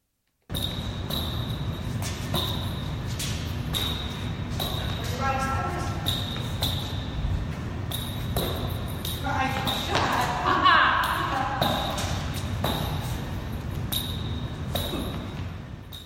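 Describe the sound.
A tennis game played with bell-filled balls: irregular thuds of bounces and hits, with bursts of bright jingling as the ball travels, and faint voices murmuring in the background throughout.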